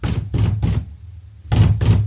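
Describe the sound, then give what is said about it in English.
Heavy fist pounding on a door, three quick loud knocks, a brief pause, then two more booming thuds, resonant with no voices. “Someone pounded on the door.”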